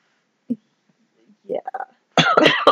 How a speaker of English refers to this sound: Yeah. I apologize if I keep coughing.